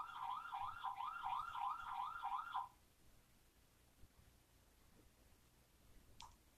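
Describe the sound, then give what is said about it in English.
An electronic alarm goes off, a rapid warbling tone repeating in quick rising chirps for a couple of seconds before cutting out, leaving quiet room noise. “Sorry, y'all. It's my alarm.”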